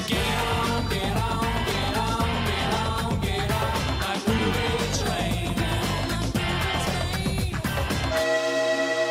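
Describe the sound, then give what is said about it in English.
A loud, steady train rumble with a rhythmic chugging beat runs throughout, then a sustained horn blast sounds near the end. No one speaks. “Chugga chugga, all aboard that movie train, Greg.”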